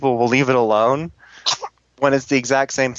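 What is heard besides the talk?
sneeze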